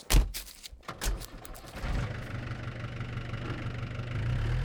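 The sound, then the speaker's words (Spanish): A car engine turns over with a few sharp bursts, then settles into a steady, low idling rumble that holds even until the end, with no one speaking; the car is about to be driven to the city of Barva. “Finally, they immediately go running to their carro and drive to the city of Barva.”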